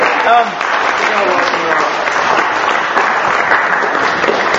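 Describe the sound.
An audience claps for an assistant in a steady, sustained round of applause lasting several seconds, dense and fairly loud throughout, with a brief voice-like sound near the start.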